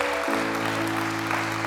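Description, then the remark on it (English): An audience claps in praise to God, a dense, continuous wash of applause while a sustained organ-like chord swells in underneath and holds throughout. “Come on and give God a hand clap of praise for that.”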